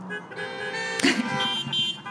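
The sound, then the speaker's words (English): Car horns honk in steady, overlapping tones, with a short, louder blast about halfway through. “I love this honking thing.”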